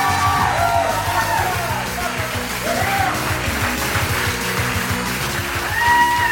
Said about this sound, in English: Keep clapping. Hello. Keep clapping. There you go.